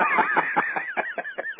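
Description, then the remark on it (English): A duck call blown in a quick run of raspy, nasal quacks, starting as a loud blurred burst and then breaking into evenly spaced single honks that grow slightly softer, with no talking. “My feelings are kind of hurt because I figured you'd have that duck call I sent you last year on your lanyard for this year, but apparently it's still in the case.”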